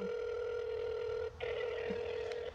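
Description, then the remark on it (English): A steady electronic telephone ringing tone from an outgoing call to someone's mother on her birthday holds for a few seconds, briefly cutting out once amid poor reception before resuming, with no voices over it. “So we're calling our mama.”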